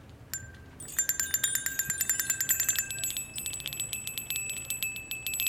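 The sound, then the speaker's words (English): A bright metallic bell rung to signal the next round: one short ding, then rapid, continuous ringing for several seconds, like a hand bell being shaken. Fairly loud, with no voices. “ring that bell”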